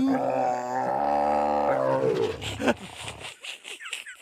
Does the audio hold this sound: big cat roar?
yes